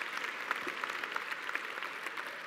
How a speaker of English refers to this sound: Yeah, you can clap for Jesus because it's really good.